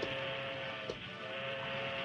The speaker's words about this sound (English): At Rock Canyon, Bushy and his men waited nearby for the trains to come along. Finally, they heard a train whistle.